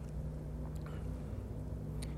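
A steady low rumble of distant traffic heard from a boardwalk in a swamp, cars and trucks droning by far off with no single vehicle standing out, with a few faint, brief higher sounds over the hum.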